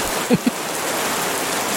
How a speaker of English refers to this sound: I love the smack, smack of each drop on something hard. No idea how long it goes on for. I asked for help a moment ago. I said, "Hey lady, ask Rain Sounds for help." And it basically just said, you know, it gives you rain.